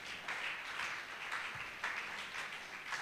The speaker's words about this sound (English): Clap, put your hands together for Jesus.